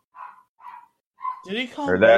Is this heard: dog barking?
yes